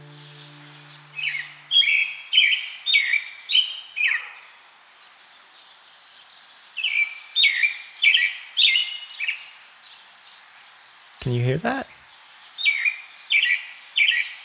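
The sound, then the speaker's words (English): Birds sing right outside a window in repeated bursts of bright, warbling chirps, each phrase a quick series of notes with short pauses between, over a soft steady hiss. A voice briefly asks something midway. “That's really the sound right outside my window right now.”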